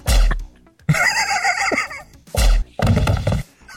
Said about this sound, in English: It sounds like a pop, like a bubble pop. Maybe a silencer for Care Bears.